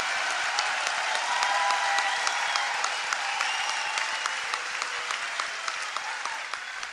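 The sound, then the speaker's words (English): A crowd applauds steadily for several seconds, a dense wash of many hands clapping at once at an even, strong level that eases slightly toward the end. “Big applause line and a little bit of revenge there.”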